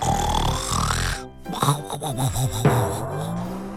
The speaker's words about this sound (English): Afraid of being asked to work again, Greedy Piggy pretended to be sleeping. He snored very loudly.